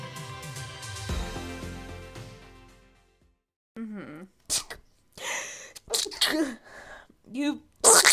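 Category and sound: human body sound, sneeze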